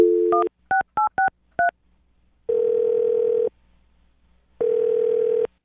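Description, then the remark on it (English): A quick run of five short touch-tone beeps as a phone number is dialed to call a woman, followed by two long steady ringback tones separated by a pause, clear with no talking. “Okay, so we'll get her on the phone and find out what went wrong.”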